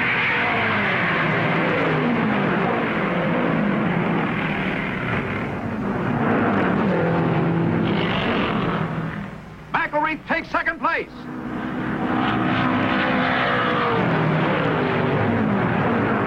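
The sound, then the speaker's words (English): Race car engines roar steadily in a dense, loud wash during a race on a track, with a brief break where a few sharper engine bursts pass. A man commentates over the noise for most of it as car number 15 charges past two cars to challenge car number one. “the rookie in number 15, charges past Sutton and Ward to challenge Boyd in car number one”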